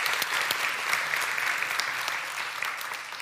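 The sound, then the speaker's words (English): Steady applause from an audience for two volunteers, a dense crackle of many hands clapping at an even level throughout, with no voices heard over it. “And let's give our two volunteers a big round of applause.”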